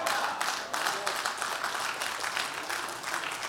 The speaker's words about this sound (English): And for some of you, y'all should have been clapping louder than others at that moment.